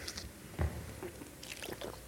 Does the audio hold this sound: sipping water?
yes